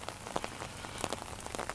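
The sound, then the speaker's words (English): Steady rain patters against a hard surface, with scattered sharper drops tapping irregularly over a constant hiss. It's moderately loud, and no one is speaking. “I don't know about you, but one of my favorite times to take a nap is when it's raining outside and the rain is hitting the window.”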